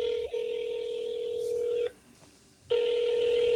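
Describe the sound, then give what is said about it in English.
A phone call ringing out: a steady, mid-pitched electronic ringback tone holds for about two seconds, goes silent briefly, then resumes. No one speaks. “It'll probably go to voicemail.”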